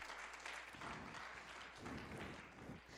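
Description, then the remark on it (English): An audience claps their hands together in praise of God, sustained, dense applause, a loud steady patter of many overlapping claps lasting throughout without any voices. “Give God a hand clap of praise today.”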